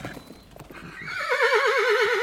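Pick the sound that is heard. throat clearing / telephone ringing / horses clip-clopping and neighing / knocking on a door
horses clip-clopping and neighing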